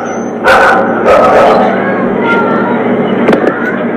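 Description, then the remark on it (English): A dog barks and yips in a few sharp, loud bursts, a cluster early on and another near the end, over a constant noisy outdoor background. “Because this woman did the same damn thing with this dog.”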